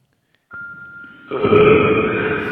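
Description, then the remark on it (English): A long, loud burp starts with a thin, steady tone, then swells into a deeper, rasping belch that carries on for about two seconds, with no talking. “Sound like a burp?”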